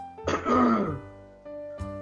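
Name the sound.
throat clearing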